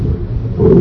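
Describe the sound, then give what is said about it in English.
A lion's deep, rumbling roar, loud, swelling slightly toward the end of a brief burst, with no voices over it. “what are you doing with your head in the lion's mouth?”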